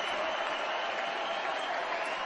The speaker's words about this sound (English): Bernie Sanders introduced at the end of the roll call that put his rival Hillary Clinton over the top, making her the nominee of the party. They're chanting his name.